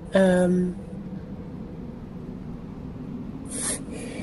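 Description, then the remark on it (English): A single sharp sneeze bursts out at the start, then quiet, followed by a short breathy hiss or sniff a few seconds later. “Bless you.”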